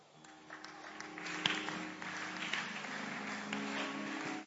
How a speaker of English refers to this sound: Those who are clapping, something is already happening.